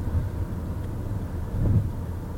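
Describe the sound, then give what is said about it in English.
A steady low rumble of road traffic passing by on Interstate 20, with one vehicle swelling a bit louder near the end; no one speaks. “There's a lot of traffic. There's more traffic than I expected it.”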